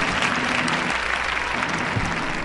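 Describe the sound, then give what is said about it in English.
An audience applauds the event's guests, including international guests, steadily, a dense, sustained wash of many hands clapping at a fairly loud level with no voices standing out, continuing evenly throughout. “Let's please give a applause to the guest.”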